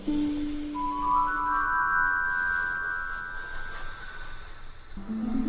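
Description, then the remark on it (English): A small sleigh bell rings out with a bright, sustained shimmering tone that lingers for several seconds before fading, heard on its own with no voices. “I lost the bell from Santa's sleigh.”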